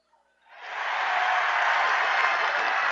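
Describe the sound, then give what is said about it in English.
An arena crowd at a basketball game bursts into cheering and applause after a brief quiet moment as a senior player makes a free throw, swelling quickly into a loud, steady roar that holds without any talking over it. “McPhillips knocks down the free throw, and good for him. 80-51. I'll let the crowd tell the story again here.”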